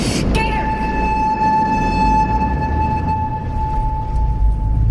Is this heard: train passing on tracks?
yes